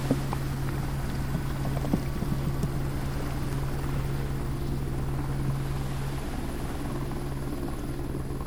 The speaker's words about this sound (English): To go out in the field for me was to have a helicopter crew, and that helicopter crew would ferry me out for an hour onto a glacier,